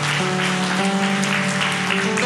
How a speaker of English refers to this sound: Could we just give God a big hand clap of praise today? Say, thank you, Lord.